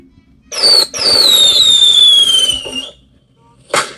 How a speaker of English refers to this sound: I was so excited, I had the fireworks go.